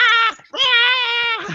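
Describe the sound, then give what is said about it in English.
A person voices the growl of a space dog with an antenna: two loud, drawn-out nasal yowls, the first short and the second longer, with a brief gap between them. “The space dog from the Enemy Within with the antenna. He's like, rah, rah.”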